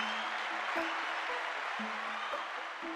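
A round of applause from an audience: dense, steady clapping that holds at an even loudness for the full three seconds, with no voices over it.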